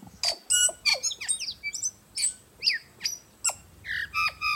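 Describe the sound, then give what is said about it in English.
A foot-long tui, a New Zealand songbird, delivers a rapid, varied series of bright whistles, clicks and sharp squeaky notes, each phrase separated by short pauses, clear with no voices. “The tui is one of New Zealand's most remarkable birds.”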